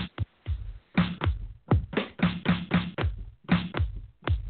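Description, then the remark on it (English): A punchy electronic clap sample from a DJ pad setup fires repeatedly in a steady, looping beat, with deep low thuds between the hits. It plays fairly loud with no voices over it. “I really do like that clap, though.”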